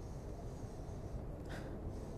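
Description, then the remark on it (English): A single short, fairly soft sniff of a Dominican Arturo Fuente Rosado Gran Reserva cigar rises briefly out of a steady low background rumble; no one speaks. “So, my uncle was telling me the first thing you do when you have a fine cigar is you give it a little sniff.”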